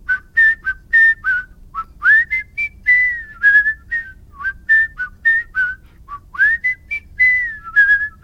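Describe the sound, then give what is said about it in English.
Clear human whistling using the double-tone technique in quick, choppy bursts, with two pitches sounding together on many notes, forming a bright, bouncing melody over a faint low hum. “And double tones.”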